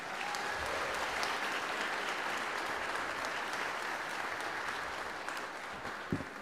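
Sustained audience applause at a 2022 high school graduation ceremony for the graduating seniors, a dense wash of many hands clapping steadily at an even loudness throughout, with no voices breaking through.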